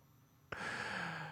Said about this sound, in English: Nope, that's just you breathing.